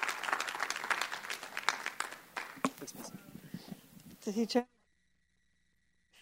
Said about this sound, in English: All right, I love you guys. If you guys enjoyed it, just clap it out for the Lord. Thank you.